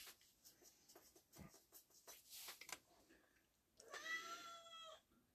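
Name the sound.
cats meowing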